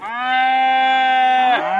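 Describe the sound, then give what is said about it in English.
A single long, loud cow moo, a steady low droning call lasting over a second before its pitch slides down at the end, with no voices or other sounds. “They're excellent mothers. They give birth on their own without our assistance.”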